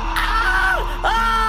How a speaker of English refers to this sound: Marky begins to scream.